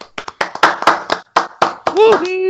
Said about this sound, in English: Give yourselves a round of applause, gents. Well done. We made it.